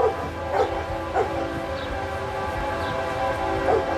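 A train rumbles past with a steady, droning hum that fills the whole stretch, while a dog barks a few times over the noise.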